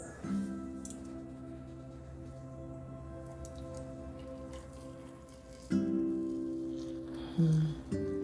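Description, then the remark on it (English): Meditation tea is poured into a cup, a steady trickling stream with a ringing resonance, swelling louder in two brief bursts near the end. No one speaks. “I have some meditation tea that I'm about to pour so we can get a nice steep on it.”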